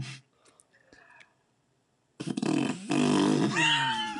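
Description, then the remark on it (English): After a near-silent opening with faint breathy sounds, someone blows a loud, wet, sputtering raspberry with their mouth, imitating a long, loose fart that lasts about two seconds. “The final is like a loose fart.”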